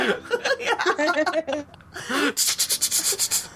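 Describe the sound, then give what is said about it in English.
A voice talks briefly, then loud, rapid keyboard typing follows: a quick run of about ten crisp, bright clicks in an even rhythm, heard alone after the talking stops. “I love how loud we can hear you typing.”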